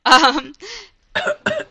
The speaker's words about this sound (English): Sorry, I just had to cough there.